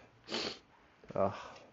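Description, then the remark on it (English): Two short nasal sniffles from a sick person, a breathy rush of air followed a moment later by a second wetter sniff with a slight voiced, snorting edge. “Like, you just have to deal with me sniffling my nose or me being quiet because I'm doing something.”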